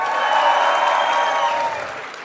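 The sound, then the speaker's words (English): An audience cheers and whoops loudly over scattered clapping, making noise to vote for which of two items they think is more valuable, a dense wash of voices that holds steady for about two seconds before starting to fade. “So make noise for what you think is going to be more valuable.”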